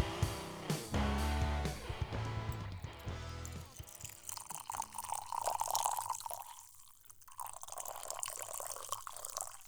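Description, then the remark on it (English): After a few seconds of music, coffee pours steadily into a cup, a gurgling, splashing stream whose pitch shifts as the cup fills, ending in a few drips. “Just to clarify, pouring coffee, delicious packed coffee.”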